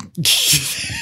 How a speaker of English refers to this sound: For the listeners at home, he's just adjusted his entire body while he yawned away from the microphone.